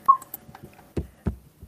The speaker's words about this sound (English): I think you're still using your microphone on your computer or something, because I keep hearing clicks like when you're tapping on your keyboard and stuff,